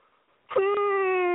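A loud, drawn-out yawn begins abruptly after a brief quiet moment, held as a steady, moan-like voiced tone that sustains to the end without fading.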